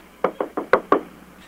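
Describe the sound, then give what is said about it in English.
Five sharp knocks on a door in a quick, slightly uneven rhythm, fairly loud, with only a faint background hum. “Uh-huh, and then just knock on the door and tell the lady you're there to inspect the shirt, and once you get the shirt, run.”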